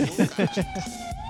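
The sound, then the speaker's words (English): A police siren from police cars in a chase holds a steady, slowly rising wail in the background, fairly faint, while a person talks briefly over the start of it. “Like, I didn't know the sirens were in real life.”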